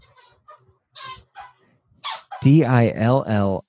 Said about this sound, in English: God, my dog literally rediscovers the freaking squeaky toy at the worst times.